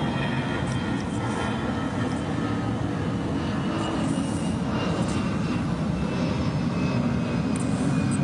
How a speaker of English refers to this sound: I'm also going to pause because there's an airplane flying overhead.